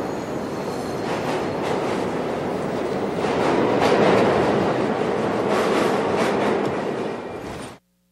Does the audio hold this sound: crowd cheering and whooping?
no